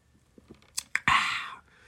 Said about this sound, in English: I need to take a sip of my soda and clear my throat.